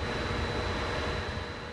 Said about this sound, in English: A pump whines in the background as he leads the way to two pipes.